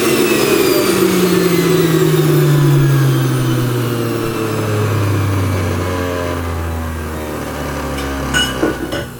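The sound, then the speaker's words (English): A juicer motor whirs loudly while juicing, then after being switched off its pitch glides steadily downward as it spins down completely over several seconds, ending with a few faint clicks and rattles. “I waited until it completely spun down before I removed the jug.”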